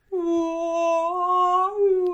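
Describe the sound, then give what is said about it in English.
A human voice sustains a long, steady, slightly wavering hum-like tone with rich harmonics, imitating a whale's song, holding one pitch for about two seconds before a slight rise and fall. “Yeah, it's like whale speak, but... We have to sing to each other.”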